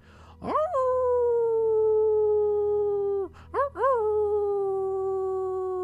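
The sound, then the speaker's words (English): A wolf howls loudly, one long wavering note that rises sharply and slowly sinks, then after a brief break a second howl starts with a couple of quick rising yips. “You howl for the world, you howl for those you love, you howl for the white wolf, you howl for the black wolf, you let your voice be heard as you hear the voice of the many.”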